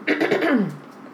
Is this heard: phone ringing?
no